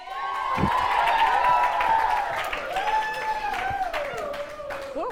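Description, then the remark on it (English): A crowd at a church gathering applauds as a speaker is introduced, with dense, continuous clapping and high whoops and cheers rising over it throughout, staying loud and full for the whole stretch. “I tried to clap for it. I nearly lost all my notes.”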